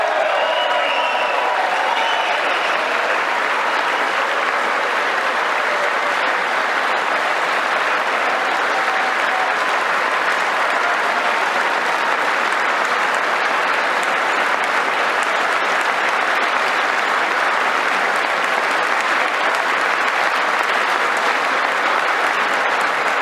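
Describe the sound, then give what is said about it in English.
Sustained audience applause fills the whole stretch, a dense, steady wash of many hands clapping at a loud, even level with no voices rising above it, following a speech line calling on members of Congress to pass legislation banning late-term abortion. “Of course, there's a lot of applause.”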